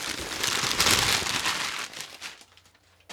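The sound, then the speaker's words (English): Packing paper crinkles and crumples as a box is unboxed, in a dense, crackly burst for about two seconds, then thins into a few softer rustles as the handling slows. “Packing paper on top.”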